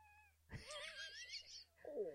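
A cat named Tilly, getting into a box, lets out a long, wavering meow, loud and drawn out, then after a brief pause gives a shorter, rising mew. No one speaks.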